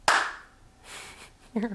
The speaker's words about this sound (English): Just clap.